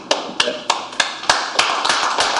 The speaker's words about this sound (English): So some applause from those in the audience at the Springfield City Council meeting.